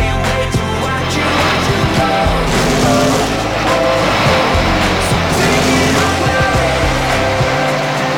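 Loud, continuous roar of NASCAR race car engines, whining and droning, packed into a dense, busy mix that may include music. No one speaks.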